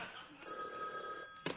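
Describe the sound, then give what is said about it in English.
A telephone bell rings steadily with a bright, sustained metallic tone, ending with a brief louder clatter near the end. “I've got to sit here in my bed suffering every time the phone rings, imagining everything that's going...”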